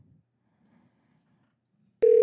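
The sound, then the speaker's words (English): Near-silence with faint low murmuring, then a loud, steady telephone ringing tone cuts in abruptly during the last moments as a phone call is placed. “I'm going to go ahead and call Stuart. And I'm going to call him on the phone.”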